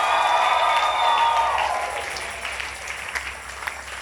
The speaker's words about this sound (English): Let's give the Lord a mighty clap offering. If you have been blessed in today's service, I want you to give the Lord a mighty clap and a mighty shout.